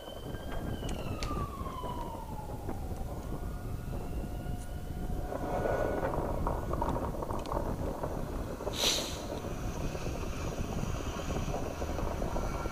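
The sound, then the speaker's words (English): A tornado, in a YouTube short video, roars in a dense, unbroken rumble, with wavering siren-like tones sliding downward early on and a sharp bright burst cracking through about two-thirds of the way in. No one speaks. “It is actually two videos showing just the awesome and horrific power of tornadoes.”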